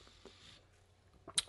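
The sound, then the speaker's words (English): A quiet sip of water followed by a soft swallow, with small wet mouth noises and a sharper gulp near the end. No one speaks. “Ah, delicious water.”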